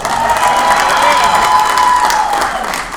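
A crowd at a comedy show applauds loudly and steadily for about three seconds as a comedian is brought to the stage, with cheers and whoops rising over the dense clapping before it eases slightly at the end.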